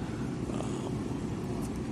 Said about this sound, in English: The next race, so I'm just standing facing the cart now, sitting in my walker as they come onto the track. So you're going to hear the roar of the cars as they just enter the track for the first lap.